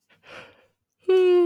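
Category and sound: human body sound, yawn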